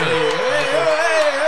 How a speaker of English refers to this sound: Big round of applause there.